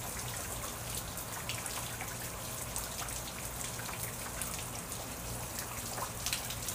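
Steady rain falls continuously, a dense hiss of drops with occasional sharper patters and drips standing out, even, with no voices.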